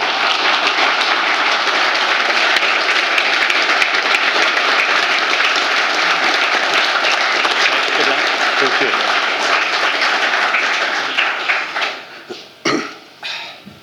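Sustained audience applause welcoming two speakers at an evening talk about a Formula One car, dense and steady, with many hands clapping at once for about eleven seconds before thinning out into a few scattered final claps.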